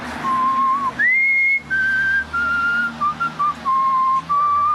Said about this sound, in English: a few seasons in, Larry is outside of a Cineplex and he's he's whistling a tune to which an aggrieved Jewish patron overhears, and this is what happens.